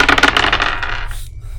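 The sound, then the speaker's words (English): A quick clatter of dice, one negative die and positive dice, rolled for a game check, tumbling and rattling on a hard surface, bright repeated clicks that taper off over about a second, then stop. “So I'm going to say there's a negative dice. And will you roll for me?”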